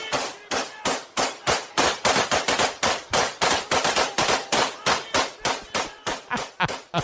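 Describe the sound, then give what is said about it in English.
Rapid, loud bursts of automatic gunfire from AK-47s, fired by Khabib's fans celebrating into the night in Russia, crack out again and again in uneven volleys, dozens of sharp reports over several seconds with no voices. “This was an Instagram post from Russia of some of Khabib's fans celebrating with their AK-47s.”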